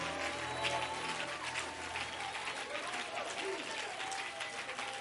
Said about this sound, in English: Can you clap your hands unto the Lord one more time? If you're excited, why don't you clap your hands a little bit louder?